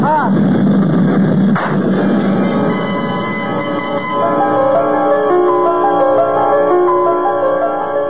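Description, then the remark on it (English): One sharp gunshot, a bullet fired into a man's skull, cracks out over the loud, continuous engine drone of a plane, followed by a steady wash of ringing, humming tones that carry on to the end. “I tried to jerk my head away frantically at the last moment, but I could feel the bullet smash into my skull and then burst in a fountain of searing sparks.”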